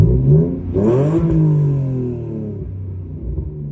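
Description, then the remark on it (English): A BMW car engine revs, its pitch climbing in a loud rising roar before settling into a deep, steady rumble that slowly fades as it idles down. “Want to give one more rev of the BMW?”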